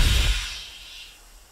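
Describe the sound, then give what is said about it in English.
The sliding door of a silver train car, a caboose, opens after a robot hand is pressed against a pad by the door: a soft low thump and a breathy pneumatic hiss that swells at once, then slowly fades over about a second. No voices. “The door slid open.”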